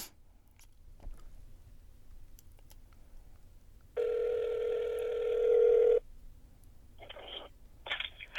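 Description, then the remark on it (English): A phone call connecting as a call is placed to a guest: a steady two-second ringback tone sounds over a quiet line, followed by two shorter bursts of ringing. Faint clicks come before it, and no one speaks. “But yeah, right now I'm about to call Trevor, the guest, and see what he got to say about this latest Pelicans news.”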